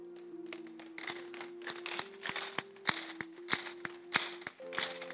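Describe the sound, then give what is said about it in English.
Men clap for a sermon in sharp, uneven bursts, crisp slaps landing irregularly over a steady sustained keyboard chord that shifts pitch toward the end. “The men should be clapping now.”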